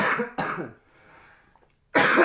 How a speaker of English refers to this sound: We apologize for the coughing in advance.